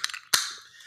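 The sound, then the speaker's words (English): A can of Climb the Wall, a farmhouse ale by Broken Bat Brewery, is cracked open: a faint scraping click at the tab, then a sharp, loud pop followed by a fizzing hiss that slowly fades. No one speaks. “Well, gentlemen, I am opening a can.”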